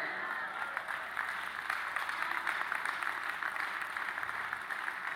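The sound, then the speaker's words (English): A church audience claps steadily throughout during a sermon, a dense, continuous wash of many hands at a fairly even level, with no clear pauses and no distinct voices standing out. “You're clapping a sick in the house right now.”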